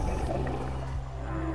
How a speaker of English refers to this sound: Another program listens to ocean recordings to help track the migration routes of whales.